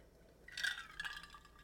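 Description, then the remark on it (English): A quiet sip of Glenlivet scotch whisky from a glass: a soft, airy slurp lasting under a second, with a faint glassy ring, and no talking. “I just want to thank my cousin because he got me this scotch for my scotch drinkers out there, my whiskey drinkers, the Glenlivet.”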